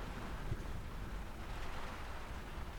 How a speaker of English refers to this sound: That's the rain and the wind and, let's face it, some moderately inclement weather battling the van I'm currently stood inside. The van I'll be sleeping in tonight.